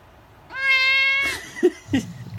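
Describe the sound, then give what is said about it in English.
A male outdoor cat lets out a single loud, drawn-out meow, steady and high-pitched like a little scream, followed by a few short, softer low sounds. “That's his most famous clip of his final little scream there at the end.”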